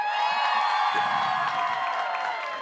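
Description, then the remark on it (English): A crowd claps and cheers, voting by applause on whether a pair of shoes should be burned, in a dense, steady roar of mixed applause and whoops, loud and sustained throughout with no pauses. “By a round of applause, who thinks these shoes should be burned?”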